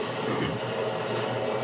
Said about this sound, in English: Is a train passing through your house? It's a subway?